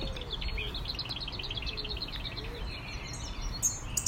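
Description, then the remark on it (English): A male sparrow chirps in a quick, steady series of short high notes, repeating throughout over a constant low outdoor rumble, with no voices present. “The male sparrow.”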